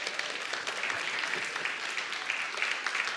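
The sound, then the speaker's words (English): An audience at a Christmas church service claps steadily throughout after the preacher mentions celebrating 20 years of marriage with his wife, a dense, even patter of many hands at a moderate level with no pauses and no voices. “It was more her than me, but I appreciate the clapping.”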